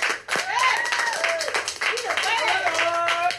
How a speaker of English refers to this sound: Round of applause for our guest